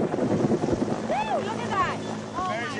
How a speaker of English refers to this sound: Take one 1,400-pound black rhino. A young female. Two veterinarians. Three game capture specialists. A 52-year-old helicopter. And you get this.